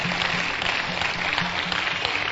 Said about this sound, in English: Are you clapping to the Lord? Not to me. To the Lord is bigger and stronger.